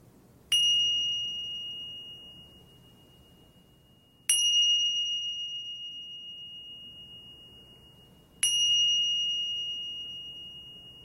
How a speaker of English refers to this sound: And so coming back to the breath in this moment, and you will hear three bells that will signify the end of this meditation.